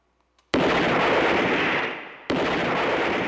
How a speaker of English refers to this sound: I felt the platform tremble under my feet again as something moved toward me. And I fired at it with my revolver.